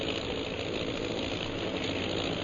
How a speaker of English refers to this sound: Oh, those sure are some planes. They must be bombers.